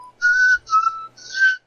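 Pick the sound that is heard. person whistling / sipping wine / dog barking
person whistling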